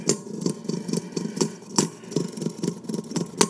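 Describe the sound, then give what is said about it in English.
Two spinning battle tops, Venom Davalos and Phantasma, fight it out in a bowl with a steady, buzzing mid-pitched hum, punctuated by sharp clacks about every half second as they knock together. No one speaks. “They're humming it out.”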